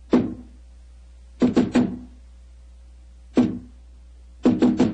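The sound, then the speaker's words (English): Solid, dull knocks on a heavy, solid door of a secret basement club in a repeating pattern: one knock, then three quick raps, a pause, then one knock and three rapid raps again. Fairly loud, with no voices. “Who knocks?”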